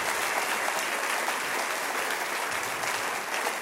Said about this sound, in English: Hey, is my wife here? Oh, come on out. Can you guys make some noise